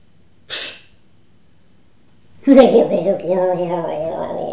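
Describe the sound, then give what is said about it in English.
A person imitates a frog's croak: a short breathy burst, a pause, then a loud, sustained, throaty voiced croak whose pitch wobbles up and down for about two seconds. “That's a remarkable sound that creature's just made.”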